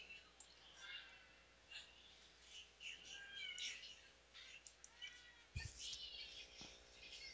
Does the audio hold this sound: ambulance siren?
no